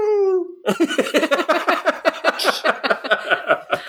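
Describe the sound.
A person voices a short, high, sliding squeal in imitation of a bull elk's bugle, lasting about half a second, then bursts into several seconds of rapid, rhythmic laughter.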